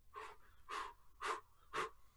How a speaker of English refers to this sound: No, he was just breathing heavily. Oh. Encouraging him.